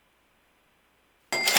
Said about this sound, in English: Deals of the week sounder. There it is. Cash register.